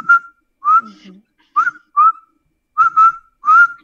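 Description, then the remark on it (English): A person whistles a distinctive call in a series of short, clear notes, some paired and some rising, with brief pauses between phrases, fairly loud with no talking. “Done a few whistles and distinctly, you know, like if I can repeat it, sort of.”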